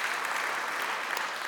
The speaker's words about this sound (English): And man, wasn't worship great this morning? Can we just give a hand clap of praise for that? Yes.